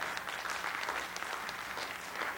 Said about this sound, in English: And thank all of you for coming out today. Yeah, give yourself a round of applause.